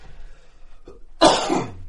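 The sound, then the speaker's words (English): A single stifled cough bursts out after a quiet stretch, a muffled, throaty expulsion held partly back, with no talking. “Well, I'm about to hold my cough back.”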